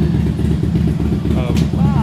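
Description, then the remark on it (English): A motorcycle engine idles with a steady, throbbing low rumble and light clatter, while a faint voice murmurs briefly in the background. “Look at the contrast between the motorcycle and its little friend next to it, the bike.”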